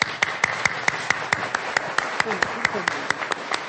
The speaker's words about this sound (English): So we are so proud of everybody here. So let's give each other a well-deserved and big round of applause.